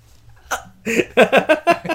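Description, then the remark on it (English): A person hiccups repeatedly: one sharp gulp, then a quick run of four or five loud, voiced hiccups in a steady rhythm, with no other talking. “I hiccup.”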